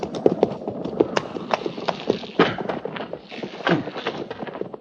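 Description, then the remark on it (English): Horse hooves clip-clop in a steady, fairly quick rhythm of sharp knocks, moderately loud, with faint voices and shuffling in the background. “get that horse and put him with the pack mules.”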